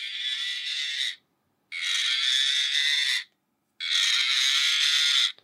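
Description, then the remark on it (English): A cow clip toy plays its cow moo sound three times in a row: harsh, tinny, hissing bursts, each lasting over a second with short silent gaps between, no deep lowing tone and no talking. “I'm tired, and I have this cow clip that my parents got me for Christmas for some reason.”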